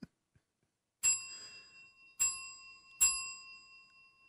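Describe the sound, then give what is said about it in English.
A small bell, played as a player's turn in a game of guessing whose bell is ringing, is struck three times at uneven intervals, each bright metallic ring sustaining and fading before the next. It is fairly loud, with no talking. “Darius, you won't play your bell.”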